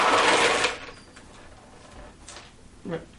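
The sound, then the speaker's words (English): Dice rattle and clatter in a loud burst lasting under a second, then things go quiet apart from a brief faint rattle and a short vocal sound at the end. “I'm concerned about the number of dice that just got rolled.”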